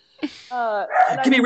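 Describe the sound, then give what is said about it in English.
A dog lets out a short burst of excited, high-pitched vocalizing: a quick yip, a drawn-out whining cry, then a run of eager barks and yelps, fairly loud. “That doggy's Reiki. They're really excited about the Reiki.”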